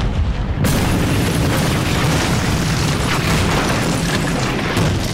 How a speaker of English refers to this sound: I mean, we all know what happens when bowler hats are fired out of a cannon, don't we? Take a look.